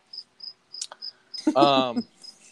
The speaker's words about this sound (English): I think that cricket's eating my leg.